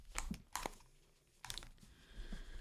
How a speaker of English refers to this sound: Okay, so sorry, that wrapping paper has been there for months.